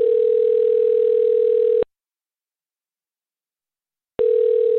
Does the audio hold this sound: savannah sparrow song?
no